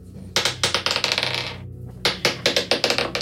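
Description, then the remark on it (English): Dice clatter and tumble across a table in two bursts of rapid, bright clicks and bounces, separated by a brief pause, with no voices, rolled for an intimidation check with disadvantage. “So go ahead and roll an intimidation check.”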